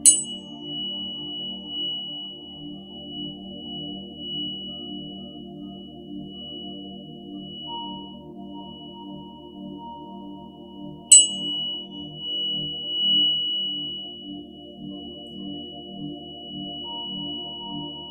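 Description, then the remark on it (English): A soft, sustained meditation tone, presented as the frequency of the pineal gland for a third-eye meditation: a layered low humming drone with a thin, steady high whistle held over it throughout, broken only by two brief bright strikes at the start and near the middle. “This is the frequency of your pineal.”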